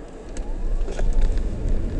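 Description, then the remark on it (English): A Toyota car with large tyres accelerates hard, pulling away fast: a deep engine rumble builds steadily, with a faint rising whine climbing over two seconds as it gathers speed. “Oh, it pulls away really fast.”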